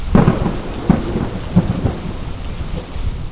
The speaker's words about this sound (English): Because that is one time you see lightning and thunder come out together.